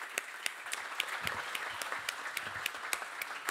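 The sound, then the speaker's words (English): An audience applauds a panel at the end of a session, many hands clapping steadily in a dense, continuous patter at moderate volume, with a few sharper claps standing out. No one speaks over it. “Let's give a round of applause to the panel.”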